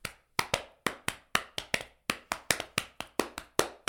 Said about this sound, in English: Everything's really good until you start hearing a large slapping sound in the distance.